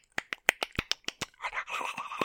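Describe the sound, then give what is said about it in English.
A person imitates otter clicking: about nine sharp, snappy clicks in a quick, fairly even series, followed by a brief breathy, scratchy rasp. No words are spoken. “And otters don't make a lot of sound. They make a lot of clicks, like.”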